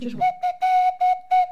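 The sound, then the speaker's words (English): A swanee whistle sounds five short toots on a single steady pitch, the middle one held a little longer, clear, with a brief low murmur at the very start. “do you think you can do that on the swaddy whistle for us?”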